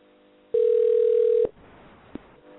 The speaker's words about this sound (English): You're going to call them. I'm going to ring them. Hold on a minute. It's only because their number's on the page. That's what I do. See if they answer.